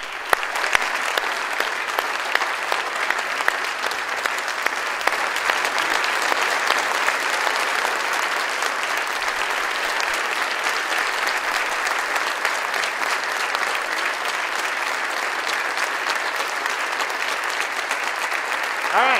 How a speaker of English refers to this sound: You might want to clap again, so we got to keep moving.